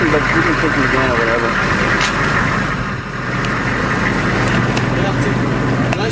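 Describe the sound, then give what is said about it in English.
A Humvee engine idles with a loud, steady rumble and rattle that runs unbroken throughout, while people talk faintly beneath the noise. “It's a Humvee idling.”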